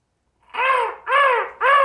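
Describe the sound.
A person imitates a distant crow, giving three hoarse, nasal caws in a steady rhythm, each about half a second long with a slightly arched pitch, alone without other talk.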